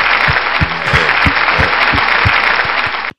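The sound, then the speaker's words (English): A clapping sound effect: a burst of crowd applause, dense overlapping claps with a few sharper individual hand strikes, loud and steady for about three seconds before cutting off abruptly. “Going to throw in some claps at this point.”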